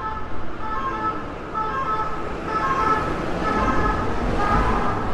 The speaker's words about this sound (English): That's an ambulance.